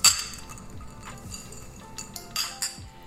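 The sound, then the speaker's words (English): A sharp clink of glasses in a toast at the start, followed by a few lighter glassy taps and clinks, with soft background murmur and no clear speech. “So we'll see how these all turned out. Cheers. Cheers.”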